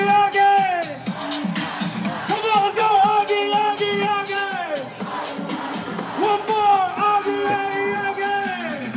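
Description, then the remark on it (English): A parade crowd cheers and whoops while a hype man in the crowd shouts over a microphone, getting people going; his rising and falling calls ride on top of continuous, loud crowd noise. “It sounds like we've got a hype man in the crowd with a microphone, you know.”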